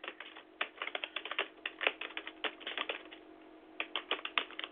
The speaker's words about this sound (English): I'm typing as we're on the air.